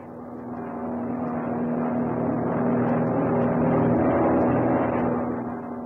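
A steady, droning airplane engine of a plane in flight, soon to land, hums on without a break, a low constant tone with a broad rumbling wash above it, swelling slightly in the middle and easing at the end. No one speaks.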